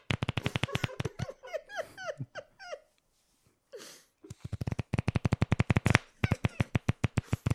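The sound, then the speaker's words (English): Playing cards are shuffled in two quick riffles, each a dense, rattling burst of sharp clicks, with a stretch of soft, squeaky bending sounds and a short pause between them. “You realize that the true nature of shuffling cards is that they sound like a fart.”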